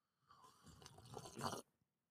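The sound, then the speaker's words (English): A noisy slurping sip of hot, freshly ground pour-over coffee, drawn out for about a second and a half and swelling slightly before cutting off, with no one talking. “You just took a sip of the coffee, and I was hoping that I was going to get that on the air, but I'm going to sip it.”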